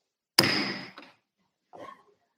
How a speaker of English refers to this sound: Just as that last gavel banged down, I was literally tweeting that Watergate was child's play.